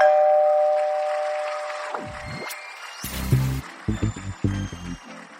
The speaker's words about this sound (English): Oh, let's hear that doorbell. Oh, I hear something.